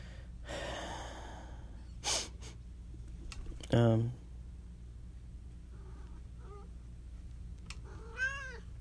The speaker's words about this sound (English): And there's my cat.